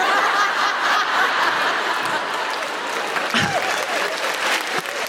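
Steady applause from a crowd fills the room, dense continuous clapping at a fairly loud, even level, with a few scattered chuckles mixed in and no one speaking.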